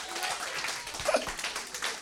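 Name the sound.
group round of applause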